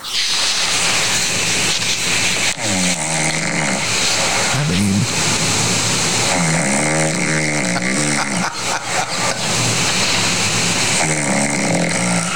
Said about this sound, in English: And I ask Siri to record her snoring. So she goes back to sleep. And so I recorded her snoring. Listen.